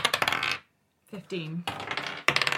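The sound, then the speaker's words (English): Dice clatter and rattle across a hard tabletop in several busy bursts, separated by a brief silent pause, with a faint tonal ringing in between, as they are rolled for initiative. “Roll for initiative, you two.”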